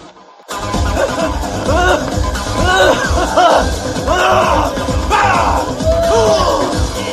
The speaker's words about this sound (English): And now with that in mind, it does then lead us to this week's Random Cage Scream of the Week.